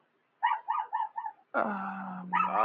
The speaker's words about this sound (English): Whatever the dog is saying, I agree. Dude. He is saying this is a bunch of bull, and he's not getting his points.